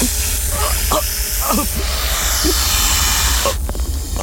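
Snakes hiss in a steady, loud, airy stream for about four seconds, with a few short voice-like sounds breaking through near the start and a sharper burst of hiss near the end.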